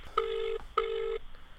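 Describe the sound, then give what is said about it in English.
A telephone rings in two steady electronic bursts with a short gap between them, clear, with no voices. “I'm on the phone.”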